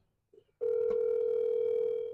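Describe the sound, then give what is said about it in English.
A steady electronic telephone tone comes on after a couple of soft clicks and holds loud and unbroken to the end, like a call ringing through on the line. “She's ringing.”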